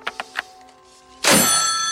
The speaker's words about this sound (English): Here's him hanging up the phone real mad.